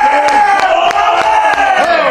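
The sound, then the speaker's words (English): A crowd cheers and whoops loudly and continuously, with sharp claps cutting through at a steady, fairly quick rhythm, as Green Bay Packers tight end Bob Tonyan is introduced on a show. “Hey, good clap there, Bob.”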